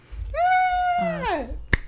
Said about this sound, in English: I'm sorry, I keep fucking clapping.